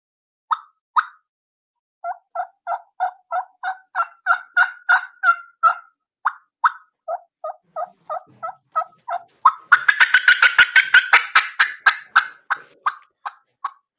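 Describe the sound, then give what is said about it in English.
An imitated turkey hen fly-down cackle with wing slapping, simulating hens flying down: sharp, clipped single notes that start spaced out, then quicken into a rapid, loud burst with a flurry of wingbeats before tapering off. No one talks. “So I just do a quick little cackle and how I give it whenever I'm flying down to simulate the hens flying down”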